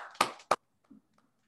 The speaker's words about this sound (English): You know, for the last time, clap it up for Hotep Jesus, man. Clap it up, clap it up.